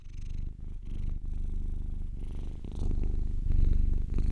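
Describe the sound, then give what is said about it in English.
A cat purrs steadily, a low continuous rumble with rhythmic pulsing that swells slightly louder toward the end. No one speaks. “Genuine purrs.”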